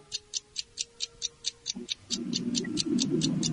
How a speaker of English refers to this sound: Go to your microwave. Okay. Let's hear the timer on the microwave go off. So set it for 1 second.